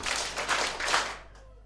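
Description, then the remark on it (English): A standing audience claps their hands three times on a count of three, in a few loose, roughly unified bursts, the hands not quite in sync, then the noise quickly dies away. “Okay, slaves, now on count of three, everybody clap your hands 3 times.”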